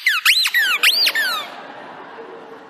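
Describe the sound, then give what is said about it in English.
Marley, a full-size schnauzer dog, chews a squeaky toy at a wedding, squeezing it in quick bursts: three or four high, rubbery squeals with rising and falling pitch, loud, then trailing off into a soft rustling background. “Just at that moment, Marley broke free, came bounding into the wedding, a squeaky toy between his jaws, loudly doing this.”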